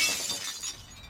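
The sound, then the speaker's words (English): A plate smashes with a sharp, bright crash, followed by a couple of smaller clattering bursts as shards scatter and tinkle away over about a second, with no voices. “I have a sense there were sort of flouncings out, doors slamming, plates being thrown, that kind of thing.”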